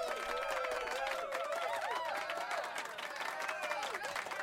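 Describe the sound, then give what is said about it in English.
Steady, dense clapping from a crowd holds at a constant loudness throughout, with an overlapping wash of voices and whoops mixed into the applause. “We're waiting for people to stop clapping, I guess.”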